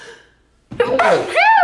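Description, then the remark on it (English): A single loud sneeze that bursts in abruptly after a near-silent pause, with a voiced, drawn-out tail that rises and falls in pitch. “Bless you, that was cute.”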